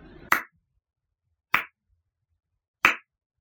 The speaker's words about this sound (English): The bar manager's facetious clapping echoed across the empty room.